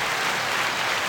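A burst of canned applause from a sound-effect button: steady, dense clapping that stays loud and even for about a second, with no voices over it.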